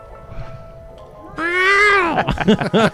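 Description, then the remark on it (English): A loud, drawn-out cat meow rises suddenly after a quiet stretch, bending downward in pitch, then breaks into a few shorter, choppy mewing bursts. “Is that the cat from could be National Lampoon's Christmas Vacation?”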